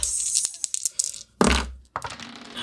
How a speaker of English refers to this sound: Yeah, stop dropping dice.